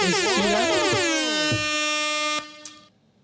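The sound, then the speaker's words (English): A loud, blaring air horn sounds in a rapid warbling burst, then holds a long steady tone for a couple of seconds before cutting off abruptly. “Air horns.”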